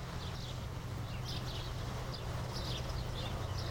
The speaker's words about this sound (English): It's the middle of April, and yesterday it snowed a few inches in Missoula, Montana. April showers, I guess. The sounds of the birds were vibrant that morning.